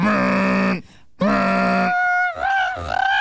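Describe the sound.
A person imitates a ship's horn with two long, deep, steady blasts separated by a short gap, followed by a wavering, rising vocal tail.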